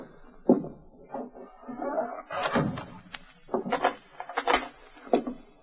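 Several dull knocks and thumps on a wooden door, three raps given as a signal, moderately loud, spaced unevenly amid shuffling and movement noise.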